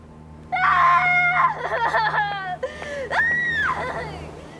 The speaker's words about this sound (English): And then she runs away scream crying like Anna Faris in Scary Movie, like we talked about in our yes, Scream episode.